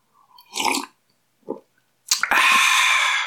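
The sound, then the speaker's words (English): A few short wet mouth sounds, then a loud, sustained airy slurp as someone sips hot coffee, with no talking. “And let me take a sip of coffee since I'm talking about enjoying it.”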